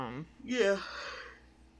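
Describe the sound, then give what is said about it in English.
A brief voiced sound opens into a breathy yawn, a drawn-in rush of air with a strained vocal tone that trails off into soft breathing. “I've yawned like four times.”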